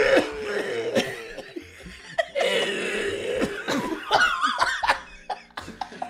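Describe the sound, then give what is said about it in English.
A voice puts on exaggerated, theatrical coughing imitating how Mother Earth talks, a run of rough barking coughs that mimic speech, mixed with bursts of laughter, with no clear words spoken. “But she talks like that. Right, it's all coughs.”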